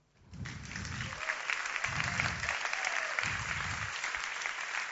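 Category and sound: crowd, audience applause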